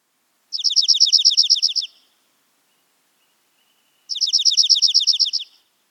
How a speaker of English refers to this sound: They have a relatively slow overall tempo and a narrow range of pitch, which produces a more musical sound. Junco songs are even and musical. It is also typically shorter than chipping sparrows, lasting up to 2 seconds.